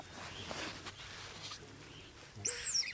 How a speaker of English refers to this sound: They're named dick dicks because of the alarm calls they make, which kind of sounds like a squeaky toy. I'm going to play a little clip of this for you.